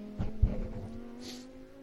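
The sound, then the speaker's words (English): A Lamborghini race car's engine roars loudly and steadily as it accelerates hard out of the final turn onto the straight during a race, with a sharp thump early on and a brief high hiss partway through. No one speaks. “Accelerating hard onto the straight.”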